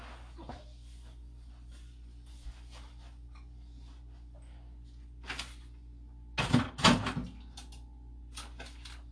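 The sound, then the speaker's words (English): A steady low electrical hum from a running microwave continues throughout, broken by a few soft clicks and then a loud clattering burst as the microwave door is opened and handled, to heat up cold pizza. “Fuck it, I'm gonna put it in the microwave.”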